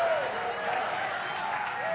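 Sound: audience shouting in praise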